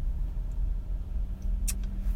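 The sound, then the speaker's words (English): A steady, low engine rumble from a truck and a Mustang on the road, with a couple of faint high squeaks near the end and no one talking. “That's a truck and a half, broski. That's a ugly Mustang.”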